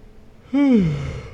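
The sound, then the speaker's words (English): A single voiced yawn, fairly loud, starting high and sliding down in pitch as it trails off into a breathy exhale, with no talking. “One more yawn before we finish up.”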